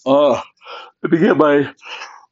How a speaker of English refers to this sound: Let me get my other yawn out.